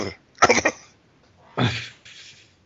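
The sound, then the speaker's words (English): A person imitates a horse's harsh, raspy cough, a quick burst of three hacks followed by a longer rough exhale and a breathy wheeze. “Hokage, which means fire shadow, which in English sounds like a horse cough.”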